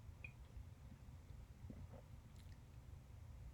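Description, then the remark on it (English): A quiet sip of Founder's Breakfast Stout beer, with soft, wet mouth and swallowing sounds over a low background hum. No one speaks. “All right, I'm gonna take a quick sip here.”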